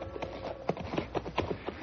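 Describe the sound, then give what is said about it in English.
Horses' hooves clip-clop in a steady walking rhythm as riders ride home, several sharp knocks, with no voices over them. “Let's rest the horses a minute.”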